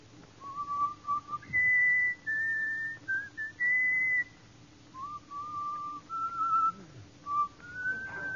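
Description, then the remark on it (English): A man whistles the tune Comin' Through the Rye, clear and melodic, a series of sustained notes stepping up and down in pitch over a faint low background hum, with no talking. “Let me hear your whistle coming through the rye.”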